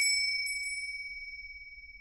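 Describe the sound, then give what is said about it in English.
A small silver bell, shaken by hand, rings out with a bright, high, pure tone, jingling a few times in quick succession before its shimmer slowly fades. No voices, just the bell. “Inside was a silver bell. There was a note.”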